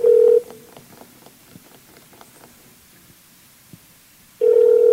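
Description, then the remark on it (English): A mobile phone placing a call: a loud, steady electronic tone sounds briefly, then faint clicks and rustling, then the same tone returns. No one speaks. “So my phone is calling.”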